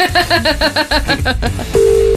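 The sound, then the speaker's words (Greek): A quick run of electronic phone beeps, about a dozen in a row, then a steady sustained ringback tone as an outgoing call starts ringing, clear and fairly loud, with no talking. “Είναι τώρα το τηλέφωνο σου στο κομωδίνο δίπλα. Ναι. Προφανώς εκεί το αφήνουμε όλοι. Βαράει, βαράει, βαράει, βαράει, βαράει.”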